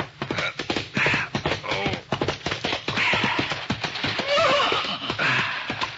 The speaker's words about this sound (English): a horse was pounding along a moonlit trail heading for the home corral.